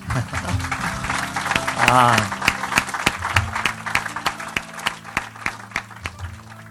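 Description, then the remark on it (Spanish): A crowd bursts into steady, dense applause for a young man that carries on for several seconds, sharp claps crackling throughout, with a voice briefly audible underneath early on before the clapping thins toward the end. “Un aplauso para este muchacho.”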